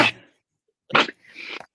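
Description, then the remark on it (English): A sneeze: a sharp burst, then a second explosive burst followed by a longer, breathy tail, all fairly loud with no talking over it. “Bless you.”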